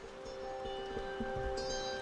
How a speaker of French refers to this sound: On entend la pluie qui bat sur la vitre dessus. On prend conscience de la manière dont cette architecture amplifie l'espace alentour.